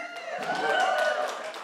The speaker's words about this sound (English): Y'all can cheer for beach camp.